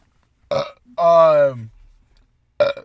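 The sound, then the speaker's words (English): A loud burp, drawn out for under a second with a throaty tone that slides lower as it ends, set between two short, abrupt vocal bursts. “Burp.”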